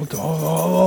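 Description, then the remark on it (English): A dog named Daisy, sitting on a person's lap, whimpers: a single drawn-out, steady whine with a low growly edge lasting about a second, with no talking over it. “Well, like, I need to get this dog off my lap.”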